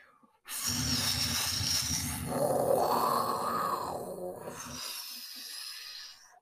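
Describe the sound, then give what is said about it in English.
A loud, breathy dragon fire-breathing roar in a cave swells up and holds for about four seconds, a rough, groaning voice-like growl with a rising and falling pitch, then cuts off abruptly; the orange dragon fire lights the cave. “Whoa, that was some amazing fire breathing.”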